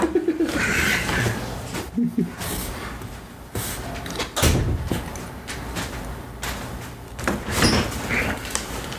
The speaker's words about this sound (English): I need to shut this door. Hold on a second.